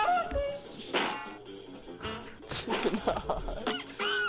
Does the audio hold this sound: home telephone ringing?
no